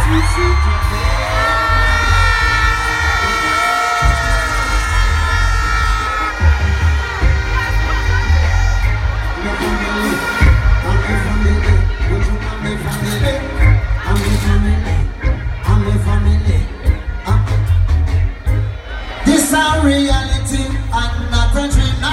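A loud, dense concert crowd screams, whoops and cheers continuously over booming live music, with high yells rising and falling throughout and a surge of shouting near the end.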